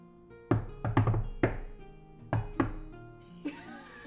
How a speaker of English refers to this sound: The same knock every time. Oh. No, there was pizzazz on the end.